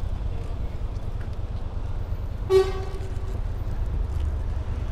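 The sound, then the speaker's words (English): A single short car horn honk cuts through steady low traffic rumble and wind noise, bright and buzzy, fading quickly. No one speaks. “Honk.”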